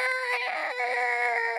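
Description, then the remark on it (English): A voice imitates the squealing of a Mazda car's badly worn brakes when the brake pedal is pressed: one steady, high-pitched, whining screech held for about a second and a half, loud and alone, with a brief waver midway before it cuts off. “I would be driving and every time I put my foot on the brake, it's just that.”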